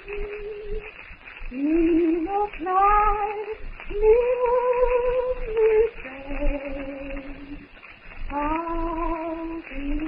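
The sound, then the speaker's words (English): A woman, relaxed and leaning back on a platform of twisted branches at night, hums a slow, wandering tune softly to herself, holding some notes and gliding between others, with no talking. “relaxed, humming softly to herself as Tarzan, fascinated, watches”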